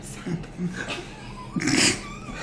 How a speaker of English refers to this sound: Yeah, well, my cat just jumped into a box. Big surprise. Oh, but you didn't have to be in there, Khaleesi.